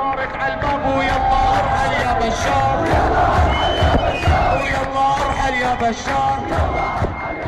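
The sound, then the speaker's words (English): A large crowd of protesters at a demonstration against the Assad regime chants and shouts together in a loud, continuous roar, voices rising in rhythmic waves of yelling and cheering throughout. “Soon the internet is buzzing with videos of demonstrations across Syria and the diaspora.”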